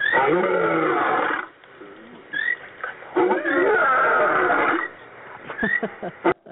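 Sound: big cat roar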